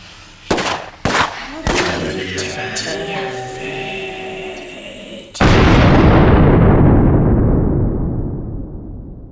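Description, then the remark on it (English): Sharp gunshots crack in quick succession, followed by a sustained rumbling roar of battle, then a heavy explosion that booms loudly and slowly fades out. No one speaks. “Just keep firing! Get some! Incoming!”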